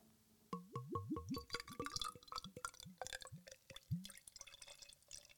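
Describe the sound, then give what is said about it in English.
Dark beer glugs from a bottle into a glass in a quick run of bubbly, rising gurgles that gradually slow and space out before the pour trails off into fizzing. No one speaks. “Hand me your glass, sir.”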